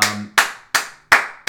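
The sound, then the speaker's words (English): A single person clapping hands four times at a steady, fairly quick pace, each clap sharp and bright with a brief ringing tail. No voices are heard. “The one clapping right now is the one who I wanted to get his opinion on.”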